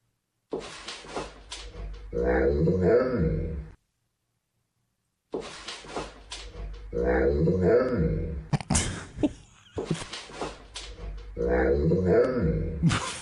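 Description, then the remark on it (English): A dog, walking up behind a woman doing an outfit check in a video, makes a drawn-out, groaning vocalization with wavering pitch that mimics the rhythm of human speech, seeming to ask "Where are you going?", heard three times in a row with a brief silence after the first. “A woman posted a video of herself doing an outfit check, and then her dog walks up behind her and seems to ask, "Where are you going?"”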